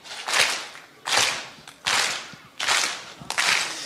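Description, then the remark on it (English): A church audience claps together in a slow, steady beat: five loud, slightly ragged bursts of many hands spaced evenly apart, with no voices between them. “I want us to just, let's just start a clap, like on this.”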